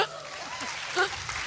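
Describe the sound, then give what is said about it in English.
An audience claps steadily for a moment-long burst, a dense patter of many hands, with a few voices calling out or laughing underneath. “All right, clap for them.”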